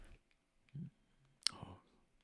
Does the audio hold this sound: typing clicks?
yes